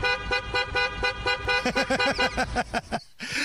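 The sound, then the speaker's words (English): A car horn honks in a rapid, steady series of short, loud blasts, roughly a dozen in a row, with a harsh buzzy tone and a brief pause near the end. “Let's hear that exact same clip, but instead of a car horn, can we get a duck quacking?”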